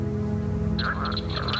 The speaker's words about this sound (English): A somewhat smaller frog with paired vocal sacs that appear as balloon-like protuberances on each side of the throat. The leopard frog, Ranipipiens. This is its mating call.